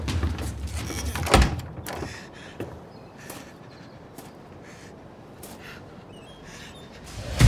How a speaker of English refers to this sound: Door just opened. Someone's coming out, male, Latino.